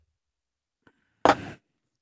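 A faint tap, then a short slurp as someone sips a drink, a single breathy gulp lasting about a third of a second with no talking around it.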